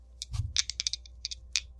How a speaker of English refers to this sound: I'm about to roll some dice.